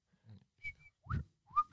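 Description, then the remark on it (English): A person whistles a short series of sharp notes, some rising upward like a signal call, with breathy puffs between them and the loudest whistle at the end. “No, whistle from the farmer.”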